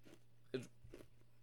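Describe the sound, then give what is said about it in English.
Crisp crunching as someone bites and chews food: one sharp loud crunch followed by a couple of softer chews over a low steady hum, with no talking. “We both just drank at the same time, and now I'm chewing.”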